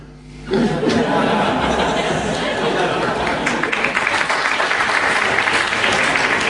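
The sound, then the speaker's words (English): A burst of audience applause for a member of the public who has just introduced himself to ask a question erupts after a brief quiet start and continues steadily and loudly, dense clapping mixed with some chuckles and murmuring from the crowd. “I've never had such applause in such an esteemed place before.”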